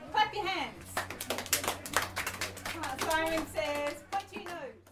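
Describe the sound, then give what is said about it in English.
A group of children at a party clap their hands during a game of Simon Says, in a quick, uneven flurry of sharp slaps, with high excited voices shouting and laughing over and between the claps. “Clap your hands.”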